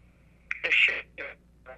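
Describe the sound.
A phone call breaking up: a voice on the line turns into garbled, tinny fragments that cut in and out in a few short bursts over a faint steady hum.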